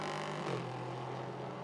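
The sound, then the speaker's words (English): The rebuilt Riley-entered number 74 race car, driven by Gar Robinson, runs along warming up its tyres; its engine drones steadily and loudly, the pitch stepping up briefly before settling into an even hum, with no voices. “And just warming up the tyres.”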